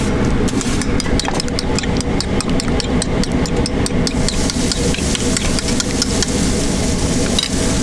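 Hash browns sizzle on a flat-top grill at a Waffle House in Avondale Estates in a steady, loud hiss, with quick rhythmic metal taps and scrapes over a low mechanical hum throughout.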